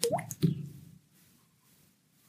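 A couple of wet, plopping drips land close by, two quick drops in the first half second, then quiet until one more faint drip right at the end.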